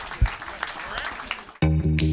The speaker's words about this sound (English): Please give a round of applause to my lovely panel. Thank you very much, guys.